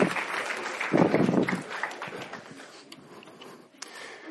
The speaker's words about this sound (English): Okay, pause. Okay, give our demonstrators a round of applause.